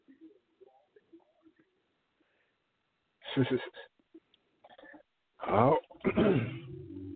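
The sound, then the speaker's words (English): A loud sneeze bursts out after soft, faint talking, followed by a couple of further sharp, breathy explosive bursts. “God bless you.”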